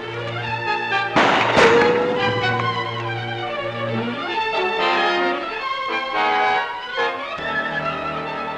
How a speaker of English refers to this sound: Now gunshots have been fired, and Clark runs to the source to find Mrs. Tasey tried to fire at the gigantic man in the protective suit.